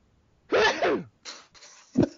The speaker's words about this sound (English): Oops, I'm about to sneeze.